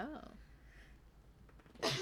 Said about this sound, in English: Oh. Sorry, coughed my head off.